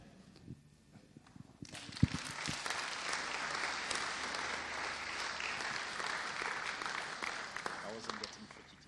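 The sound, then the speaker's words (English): A crowd breaks into sustained applause for a speaker after a quiet moment, the dense clapping rising quickly and continuing steadily until the end. “Shall we give him another round of applause?”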